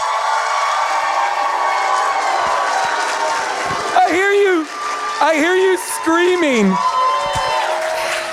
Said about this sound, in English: I hear you screaming